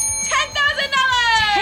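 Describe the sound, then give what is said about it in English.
A hand bell is rung in celebration of a $10,000 donation match by Reliant, struck repeatedly in quick succession so its bright metallic tones overlap and keep sounding throughout. “Where's my bell? I know. Get the bell”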